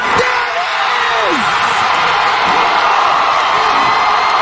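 arena crowd cheering

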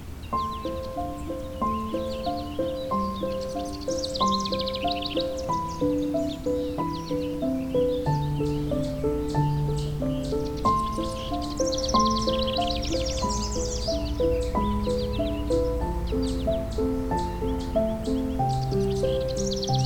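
house wren song

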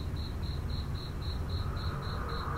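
crickets chirping

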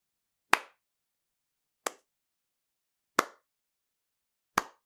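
slow clapping

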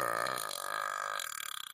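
loud burp

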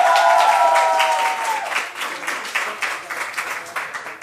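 audience applause

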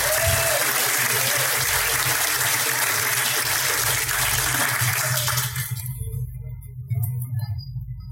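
audience applause

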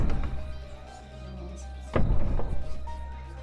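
doors being shut

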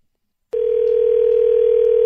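telephone dial tone

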